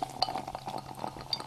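Dry, cloudy, sparkling hard cider from the Cotswold Cider Company, 4.8%, pours into a glass, a soft crackling fizz threaded with faint glassy clinks and gurgles, quiet and continuous, with no voices.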